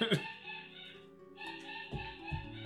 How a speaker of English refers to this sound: That's just how he barks. He's okay.